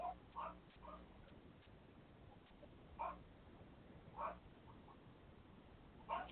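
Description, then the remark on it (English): A Great Dane puppy named Duke lets out scattered short, high yips and barks while playing with other dogs, Sparky and Ebony, spaced irregularly a second or more apart, heard somewhat in the background over a steady low hum, with no talking. “Do I hear that puppy barking in the background?”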